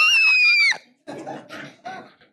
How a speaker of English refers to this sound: Screaming memes.